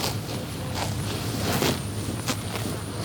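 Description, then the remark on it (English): 24 cows walking and grazing on acres of pasture at Tim Pedroso's farm in rural Northern California, 100 miles north of Sacramento: soft, irregular hoof thuds and rustling crunches of grass over a steady low hum, with no voices. “At Tim Pedroso's farm, 24 cows walk on acres of pasture and munch happily on grass.”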